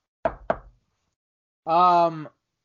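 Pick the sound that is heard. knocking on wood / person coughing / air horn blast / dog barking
knocking on wood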